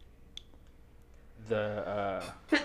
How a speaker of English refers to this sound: Bless you.